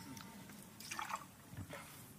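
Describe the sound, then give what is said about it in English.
A quiet stream of drink is poured into a glass, splashing and gurgling with drips and small bursts over about two seconds. No one speaks. “And he says, let me pour you something to drink.”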